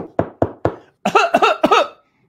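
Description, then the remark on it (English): Six coughs with no talking: three short, dry bursts at a steady pace, then three louder, raspy, voiced coughs in quick succession. “You know, the benefit of my age now, I can have my balls checked, turn and cough, and the doctor and I are not even in the same room.”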